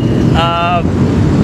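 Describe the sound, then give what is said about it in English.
Steady engine rumble fills the air, with a brief rising mechanical whine from a passing motorcycle standing out for a moment, loud, like a group of motorcycles rolling by outdoors. “I'm sorry, wait for the motorcycles.”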